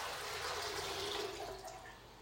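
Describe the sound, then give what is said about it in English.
Water runs steadily from a tap into Bennett the pet's water bowl, a continuous hiss with a slight rising tone as it fills, then tapers off slightly near the end. “Filling up Bennett's water bowl.”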